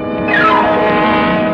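A car engine sweeps by as a car comes around a curve behind a stuck car, its loud whine sliding down in pitch over a steady rumble of road noise, then settling into a sustained hum, with no voices.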